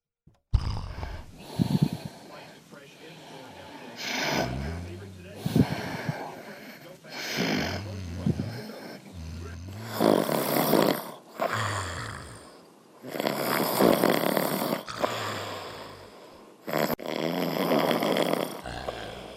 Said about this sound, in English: We have audio of him snoring